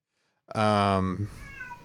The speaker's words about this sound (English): Okay, this cat got to shut up.